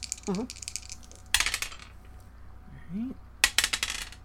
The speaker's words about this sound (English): so we get to roll the good dice.